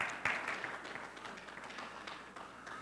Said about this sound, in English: Can you give the Lord a hand clap of praise tonight?